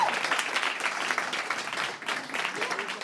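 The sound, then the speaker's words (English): An audience applauds for Alaska, a dense, steady wash of many hands clapping for about three seconds, briefly thinning near the end before swelling again. “Applaud for Alaska.”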